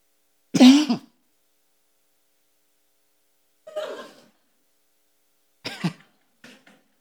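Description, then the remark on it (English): A loud cough rings out, followed a few seconds later by quieter throat clearing and a couple of short hacking bursts, with silence between them. “I got it before the cough came out.”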